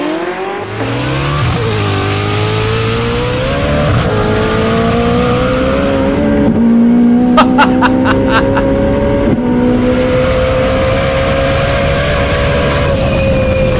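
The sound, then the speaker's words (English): A modified car engine in a video being watched roars and revs loudly, its pitch climbing steadily through gear changes, with a brief burst of sharp popping crackles midway. “you understand that Fat House has gotten their car to Viper territory. I'm sorry, I'm watching that shit again.”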